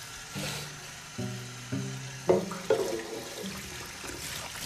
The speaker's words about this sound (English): You're gonna make a podcast or you're gonna wash dishes? Well, I'm gonna do both.